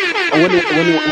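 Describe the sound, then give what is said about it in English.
A loud, brassy air horn blast rings out for just over a second, its buzzy tone holding steady before cutting off sharply. “That's a second air horn.”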